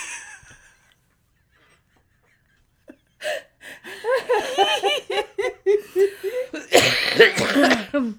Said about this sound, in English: I have a smoker's cough and I've never been a smoker. And I don't know how.